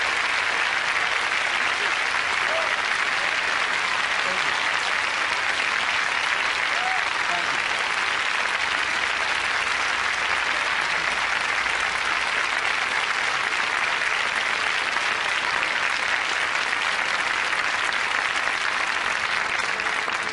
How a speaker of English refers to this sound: Let's give Mrs. Rosa Parks a round of applause, if you please.